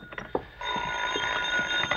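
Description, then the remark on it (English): A telephone rings in an apartment shortly before midnight with a steady, high electronic trill that starts a moment in and continues, while soft thumps sound at intervals underneath. No one speaks. “You're still searching for a solution shortly before midnight as you enter your apartment to find the phone ringing.”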